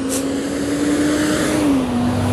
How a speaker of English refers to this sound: Let these little cars and stuff pass by, because like I said, it's a walking podcast and I'm out walking and doing my thing.